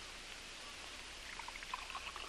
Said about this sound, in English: Now then, pour yourself a good stiff drink. It'll blaze you up. You need it.